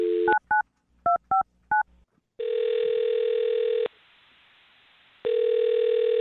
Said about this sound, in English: I'm going to dial his phone number right now and see if we can get him, okay? All right. All right, here we go.